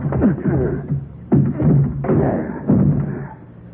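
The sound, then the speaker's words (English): The door of a wrecked car, its whole front end smashed in, being forced open: a series of heavy thumps and jolts, about four strong impacts spaced unevenly, with grinding, creaking strain between them. “Hey, give me a hand with this door, will you, Sheriff? All right, force it open.”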